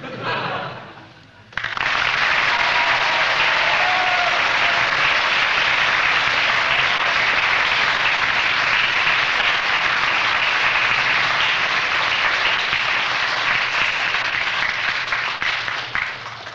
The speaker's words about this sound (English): Seconds of rather half-hearted applause there, giving him three marks. That's good.